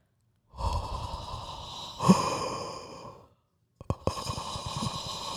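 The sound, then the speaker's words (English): A voice imitates heavy, raspy breathing like Beavis and Butthead: a long, loud drawn-out breath, a brief pause, then another harsh breath. No words are spoken. “I feel like my breathing sounds like Beavis and Butthead or something.”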